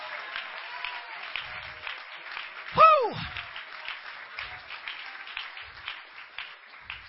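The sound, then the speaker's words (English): A crowd at an evangelist's gathering claps steadily and continuously, a dense sustained wash of applause, with one loud whooping cheer rising above it near the middle and a few scattered voices. “Clap your hands and shout yes with the evangelist today.”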